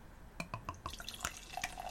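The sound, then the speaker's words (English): Kombucha being poured from a big green ceramic bottle, with a quick run of glugs and splashes that settles into softer bubbling, quiet and with no talking. “And the pour.”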